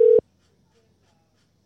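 A phone call being dialed with the volume turned up: one short, loud electronic tone sounds at the very start, then cuts off into near silence with only a faint low hum.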